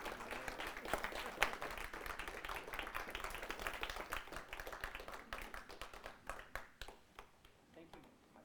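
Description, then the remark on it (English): An audience claps steadily for a man just presented with his certificate of ordination, a dense wash of many hands at an even level that gradually thins into scattered, separate claps as it fades toward the end. “Clap for him.”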